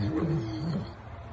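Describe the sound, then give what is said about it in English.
A deep, rumbling growl from a real pet wolf rises and wavers for about a second before fading out, fairly loud, with no talking over it. “It's his pet wolf. That's a real wolf.”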